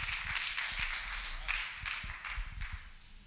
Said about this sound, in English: If you'll do me a favor and everybody give our fearless leader a round of applause, he's going to come up and take over.